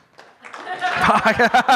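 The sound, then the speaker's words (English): An audience breaks into applause when asked to clap if they enjoyed the Olympics. The clapping swells quickly from a few claps into a loud, full burst, with voices cheering and whooping in rhythmic surges over it. “Give me a round of applause if you enjoyed the Olympics.”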